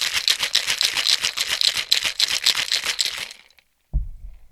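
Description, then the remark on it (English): A cocktail shaker is shaken hard for about three seconds, ice rattling in a fast, steady rhythm of bright, clattering bursts, then it stops and a soft low thump follows after a brief pause. “Once you've done that, close your shaker, and you know what to do next. Shake, shake, shake.”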